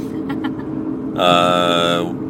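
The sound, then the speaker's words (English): Steady low road rumble fills the inside of a car driving to Walmart, with a brighter, sustained tonal sound cutting in about halfway through over the constant hum. “are driving in the car, talking about bridal showers, going to Walmart.”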